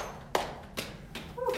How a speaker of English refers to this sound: And on your exhale, let's tap out the right thigh.